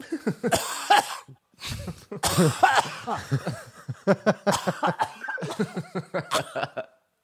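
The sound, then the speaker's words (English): A person imitates a young nephew coughing at someone, a series of exaggerated, breathy coughs in quick irregular bursts, fairly loud, with a few chuckling sounds mixed in. “My nephew walks up to me, coughs like this.”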